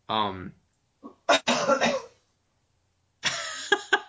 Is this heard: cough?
yes